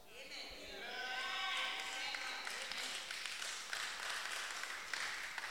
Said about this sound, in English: But, you know, I'd rather next time they clap for you, not clap for me. See? No, seriously. Why don't you do what I do so that they can also clap for you?